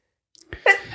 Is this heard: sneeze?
yes